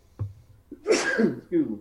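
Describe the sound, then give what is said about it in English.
A single loud sneeze: a short intake of breath, then a sharp burst of air, with a brief vocal sound trailing right after it. “excuse me. Bless you.”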